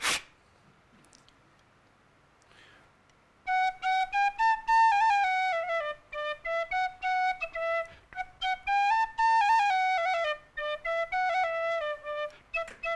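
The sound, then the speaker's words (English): A tin whistle, played live by a speaker, plays a bright, lilting melody of many short, clear notes, fairly loud, after a brief click and a few seconds of near silence. No one talks. “That is a tin whistle, and I've brought it along here.”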